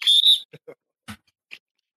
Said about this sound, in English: Self-whistle.